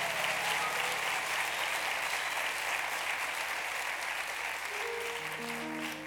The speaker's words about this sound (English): We are at the part of our worship service where we want to recognize and celebrate the class of 2022, all graduates in that class. Can we get a round of applause for them right now?